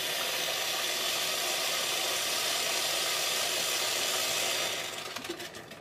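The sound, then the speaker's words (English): A steady, loud hissing rush of boiling water pouring from a boiling-water tap after a red button is pressed down, continuous for several seconds before it tapers off and sputters to a stop near the end. “You get boiling water out of a tap.”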